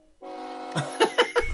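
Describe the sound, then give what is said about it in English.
A loud train horn sounds a steady, chord-like blast, with a few rhythmic chugging bursts joining in over the last second. No one speaks. “The pain train.”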